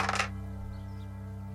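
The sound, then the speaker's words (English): A quick rattle of three purple dice tumbling across a tabletop, lasting only a moment, then nothing but a steady low electrical hum. “So make an arcane against hard. 3 purple dice.”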